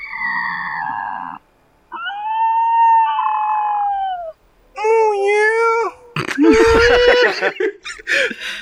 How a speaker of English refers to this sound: Within the hoop is a roiling surface of swirling black and gray, from which issues a chill wind and faint distant screaming.